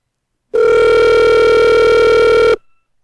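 A telephone ring as a caller is rung through on hold: it sounds once as a loud, steady electronic buzz with a bright, harmonic-rich tone, holding unbroken for about two seconds before cutting off abruptly. No one speaks.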